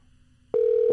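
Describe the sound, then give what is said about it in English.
A steady telephone dial tone comes on abruptly about halfway through and holds at an even, loud pitch until the end, with only faint low background hum before it, as someone places a phone call to their mother. “I'm calling Ma.”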